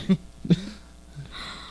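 human body sound, coughing

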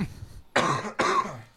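human body sound, cough

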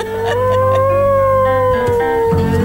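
animal, hound dog howling

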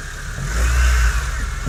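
vehicle, car engine running

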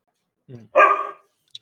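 animal, dog barking in background

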